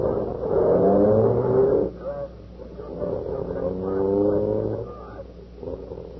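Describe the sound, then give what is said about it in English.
A police car engine revs up twice in strong, rising surges, each lasting a couple of seconds, with a steady lower rumble idling in between and no clear talk. “Boy, this is the first time I ever rode in a police car.”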